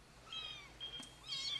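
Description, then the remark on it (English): A kitten gives a few thin, high-pitched, soft mews in quick succession, with no one talking over them. “What happens with that kitten?”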